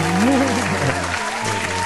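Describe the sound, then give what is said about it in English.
An inserted applause sound effect on a show: a crowd bursts into loud, dense applause that fills the whole two seconds, with a few cheering voices rising through the steady clapping. “Insert clap.”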